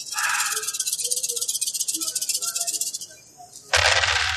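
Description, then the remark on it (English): A big handful of 46 dice, rolled for a decisive attack in a game, rattles in a steady, dense clatter of bright clicks for about three seconds, then spills out in a sudden louder, fuller crash at the end. No one talks. “You can roll 46 dice on this decisive attack.”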